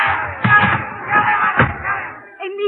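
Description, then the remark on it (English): An angry mob chasing a man shouts in a dense, overlapping roar, punctuated by heavy thuds like running feet or slamming, before the noise cuts off and a single voice speaks. “Crowd. They're after me.”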